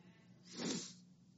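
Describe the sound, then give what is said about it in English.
One short, breathy sneeze bursts out and fades within half a second, sounding muffled against a quiet background with no talking. “God bless you.”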